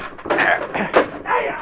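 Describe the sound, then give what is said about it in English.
A chair thrown down a flight of stairs leading to an attic tumbles in a quick run of loud, clattering wooden bangs and knocks, with a sharp hit near the middle and a final rattling crash. “I'll throw this chair down the stairway.”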